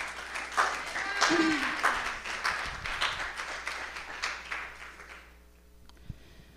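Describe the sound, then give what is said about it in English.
An audience applauds as people are called up to the front, with dense, steady clapping for about five seconds before it fades out to quiet, with a faint tap near the end. “Yeah, clap for them for sure.”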